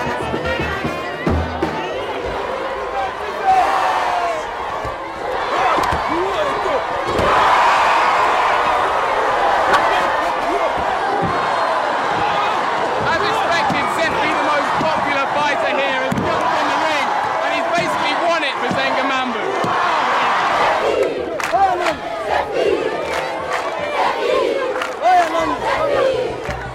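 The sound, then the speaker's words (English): A large, loud crowd roars and shouts continuously at a tag team wrestling match in Kinshasa, with police present to control the crowd, and sharp slams and thuds cutting through the dense wall of yelling and chatter. “So the police, if they weren't here to try and control the crowd, this theatrical demonstration of violence could turn into something much nastier.”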